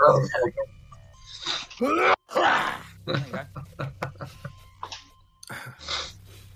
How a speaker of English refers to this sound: That's what's known as a stage cough. A stage cough. Yeah. If you're playing old Fagin in Oliver Twist and you need to cough to the back row of the amphitheatre, that's how it's done.